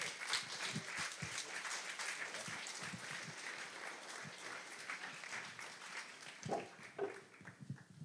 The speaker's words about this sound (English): Ladies and gentlemen, please join me in giving a warm round of applause to Michael Harlan Turkell and Nathan Myhrvold.